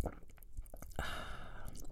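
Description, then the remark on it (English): Wet mouth sounds of someone sipping a porn star cocktail: a few soft smacks and clicks, then a longer hissing slurp, with no talking. “Well, child, let me have a little sip of my porn star.”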